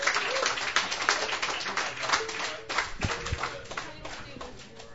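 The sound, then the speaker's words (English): An audience applauds steadily as a band is welcomed to the stage, a dense crackle of many hands clapping at once with no break, holding a fairly even, moderate loudness throughout. “So please do give a big round of applause and your attention, please,”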